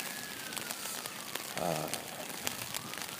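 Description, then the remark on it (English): Steady light rain patters softly and continuously in Vancouver during an afternoon walk, a little heavier than drizzle, with scattered drops ticking over the even hiss and a brief muffled sound partway through. “We have the usual Vancouver rain that is hard at work.”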